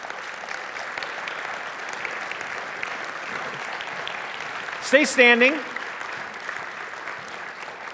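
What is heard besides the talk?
audience applause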